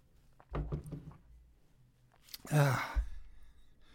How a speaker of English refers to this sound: Man, my throat is drying out quickly. I need a sip. This is grape juice, by the way, not coffee or wine.